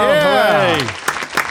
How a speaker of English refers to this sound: Right. Applaud yourself. Go ahead. Yeah, stop that. Giving myself the clap.